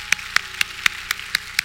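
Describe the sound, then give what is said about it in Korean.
Audience applause for a volunteer during a card trick, in the form of seven sharp, evenly timed claps, about four per second, crisp and moderately loud with no voices over them. “박수 주시기 바랍니다.”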